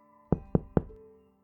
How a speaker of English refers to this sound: That afternoon, Tyler's friend who lived next door stopped by and knocked on the front door.